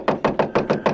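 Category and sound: impact, knocking on a door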